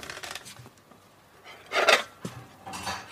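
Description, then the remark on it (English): A plate being cleared away: several rasping scrapes of crockery, a louder scrape near the middle, a sharp clink, then another scrape, with no talking. “Okay, clear away your plate then.”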